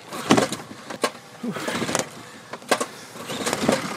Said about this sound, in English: Not that easy to start this motor.